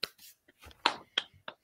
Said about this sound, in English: Anyways, creating G.I. Joe Volume 13 is done on Kickstarter. It is funded. So congratulations to Dan and everyone responsible there. Round of applause.